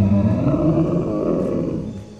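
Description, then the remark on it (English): A deep, bellowing roar coming from the middle of a village rumbles loudly and steadily for a couple of seconds, heavy in the low end, then gradually fades at the close, with no voices present. “And then you suddenly hear this bellowing roar coming from the middle of this village.”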